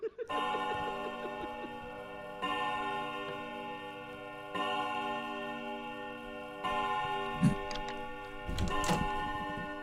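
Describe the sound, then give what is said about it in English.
A clock strikes 5 a.m. with four ringing, sustained chimes spaced about two seconds apart, each tone hanging over into the next, followed by a few brief knocks and rustling noises near the end. “The clock strikes 5 a.m.”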